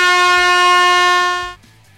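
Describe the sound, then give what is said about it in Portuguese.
A single loud, sustained air horn blast with a bright, buzzing harmonic tone, holding steady for about a second and a half before cutting off abruptly, sounded because a speaker ran over his time limit. “Vem a buzina pro Fernando aqui, porque, né, acabou extrapolando um pouquinho”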